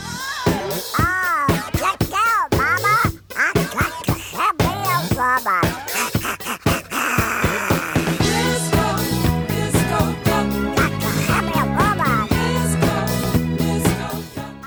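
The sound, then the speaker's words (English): A loud, upbeat novelty disco song plays continuously, a squawky voice imitating a duck's quack singing over a steady dance beat and bright backing instruments; the song was the number 2 song in America at the time. “That's right, number 2 song in America, ….”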